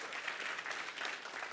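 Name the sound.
audience clapping hands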